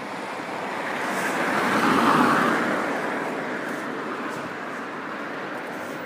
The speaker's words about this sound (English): I'm going to let these cars pass. It's what we call immersive ambient noise.